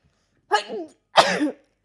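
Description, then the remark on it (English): Two loud explosive bursts a moment apart, the second one sharper and more forceful, like a person sneezing, with quiet surroundings before and after. “I need to sneeze.”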